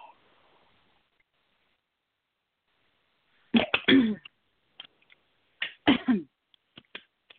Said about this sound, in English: Excuse me, everyone. I don't know what is making me. I keep drinking water and it's, I can't clear my throat. Hold on.